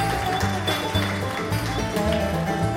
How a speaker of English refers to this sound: That music you hear behind me right now is …